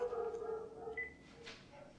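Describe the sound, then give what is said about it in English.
A neighbor's dogs bark and whine faintly, a drawn-out tonal yelp followed by a few shorter barks, heard alone with no talking. “Those aren't my daughter's dogs. Those are the naughty neighbor's dogs.”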